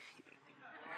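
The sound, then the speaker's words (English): A person gives a short nasal, braying vocal imitation of a horse, growing slightly louder over about a second. “No, that's a horse, eh?”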